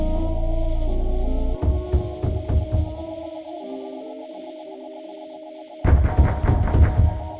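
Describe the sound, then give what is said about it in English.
An MRI scanner with a woman inside hammers out rhythmic mechanical pulses over a steady electronic drone, eases into a quieter buzzing pattern, then resumes loud, rapid knocking. “Then a hammering, a pulse winds faster. Inside the machine, she knows magnets spin in short, engineered orbits to peel away layers to see inside her.”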